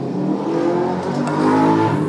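A loud engine revs steadily outside in a neighborhood, its rough mechanical roar continuous with rising harmonic whine, like a souped-up vehicle being pushed hard, as in drag racing. No voices.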